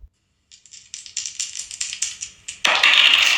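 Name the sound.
dice being rolled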